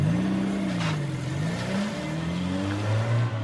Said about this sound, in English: Soon, a caravan of rented furniture trucks arrived to carry them inland.